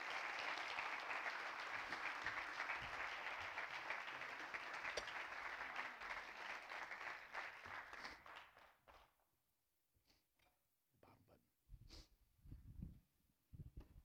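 Sustained audience applause honoring guests called up to the front, a dense wash of many hands clapping that holds steady for several seconds, then thins out and fades, leaving a few scattered claps and soft rustling.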